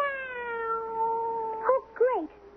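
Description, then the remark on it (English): A cat meows in a long, drawn-out tone that slowly falls, followed by two shorter rising-and-falling meows close together, heard clearly and alone. “Now you're just going to sneak out of it, all by pretending to be a plain old cat.”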